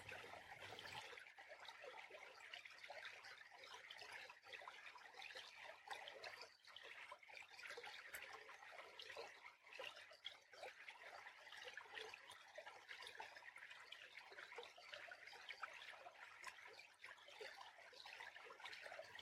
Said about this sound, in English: The water can carry you with ease. There is no resistance, just the gentle stream flowing softly, washing away your struggles, allowing you to surrender.